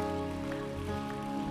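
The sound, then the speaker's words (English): A steady wash of dense clapping, a crowd giving Jesus a round of applause together, running the whole time over sustained, held musical tones underneath, with no talking. “Let's give Jesus a round of applause this year, a victorious one.”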